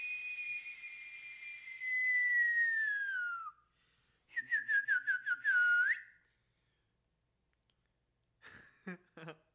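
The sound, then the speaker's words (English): A person whistles in bird-like fashion: a long, slowly falling tone, then a quick run of short chirping notes ending in a rising swoop, followed by a few brief broken sounds. “We don't speak bird. No, it's called a whistle.”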